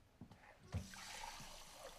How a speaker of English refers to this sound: Yeah, this beat with the water, it wasn't in the script. It was something just came up with on the day we were shooting. I don't know why this sound in the silent room of someone drinking water always makes me laugh.